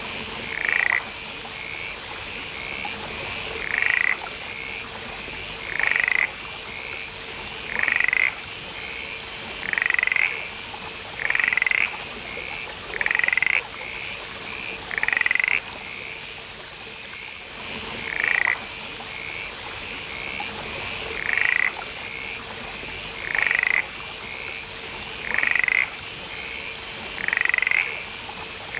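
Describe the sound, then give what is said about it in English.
A mountain mist frog calls repeatedly in short, bright pulses roughly every two seconds, standing out clearly over a steady background hiss and a low hum, with no voices. “And hear the sound of the mountain mist frog.”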